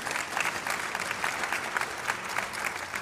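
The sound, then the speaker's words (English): An audience applauds steadily as two volunteers come forward, a dense patter of many hands clapping at a moderate, even level with faint peaks of individual claps standing out throughout. “Please give him a round of applause as they're coming forward.”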